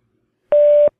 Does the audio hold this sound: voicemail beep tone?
yes